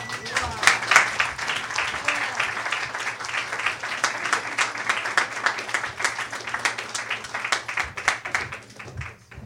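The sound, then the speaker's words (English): An audience at the Yop claps steadily for several seconds after a poetry reading, a dense patter of many hands at moderate loudness, tapering off toward the end with a few murmured voices. “One more round of applause”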